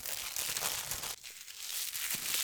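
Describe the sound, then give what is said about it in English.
Crinkly plastic shrink wrap being torn and peeled off a Blu-ray case, a steady bright rustling and crackling with a brief pause midway before the crinkling resumes. “I'm actually going to, you can hear, I'm gonna open the shrink wrap here.”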